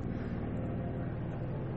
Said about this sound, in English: Sorry, y'all, airplanes going by.